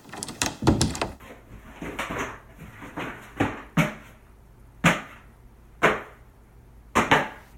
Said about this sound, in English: After a minute, the door opened